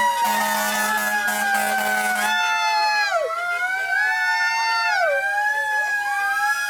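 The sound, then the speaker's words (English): Sirens of police cars and fire trucks coming down the street in a graduation parade wail together, their rising and falling tones overlapping loudly and steadily, with a low horn-like drone early on and traffic noise underneath. “There's just police officers and fire trucks coming down the street, and you and a couple of your friends in your gowns.”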